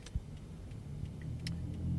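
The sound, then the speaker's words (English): A motor vehicle's exhaust note rumbles steadily, a low throaty drone that swells slightly toward the end, with a couple of brief clicks over it and no talking. “Listen to that exhaust note.”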